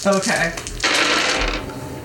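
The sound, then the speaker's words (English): Dice clatter and rattle across a hard surface in a busy tumble lasting about two seconds, with a brief murmur of voice at the start. “No, I want to see what his roll is first, then we'll see.”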